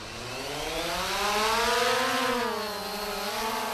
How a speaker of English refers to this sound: A small drone mounted with a GoPro camera lifts off, hovering over a field in the outskirts of the Kenyan capital of Nairobi. The drone operator keeps it low.